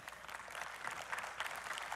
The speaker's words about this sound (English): So we got some people clapping. They're like, hallelujah, I am rich. Praise God.